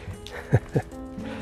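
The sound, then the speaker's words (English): A small dog shuffles about, making two quick, soft thumps in close succession against a quiet background. “His little doggy.”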